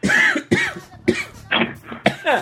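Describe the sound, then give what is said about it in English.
A run of five or six harsh, hacking coughs in quick succession, roughly half a second apart, loud, with raspy throaty tails between bursts. “I've been coughing and hacking all day.”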